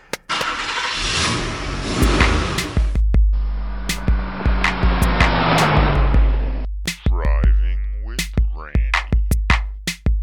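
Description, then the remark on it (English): A 2018 Subaru Black Edition car with 66,666 miles on it runs with a steady low engine rumble and loud road noise while driving, punctuated by sharp clicks, then revs with rising and falling whine near the end. No one speaks. “Oh my God, ladies and gentlemen, I had to pull over to let you guys know I just hit 66,666 miles on the car. Woo! The Subaru 2018 Black Edition.”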